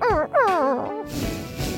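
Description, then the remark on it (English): A few short, high whines slide downward in pitch as Slinky, a toy dog, whimpers, fairly loud, then give way to a rushing, noisy wash of sound. “Slinky whimpers.”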